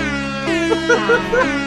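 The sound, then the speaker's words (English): A loud, sustained air horn of the kind used at games blares with a rich, buzzing tone for nearly two seconds, while a few short higher-pitched notes pop out over the steady blast. “That's an air horn that they use at games.”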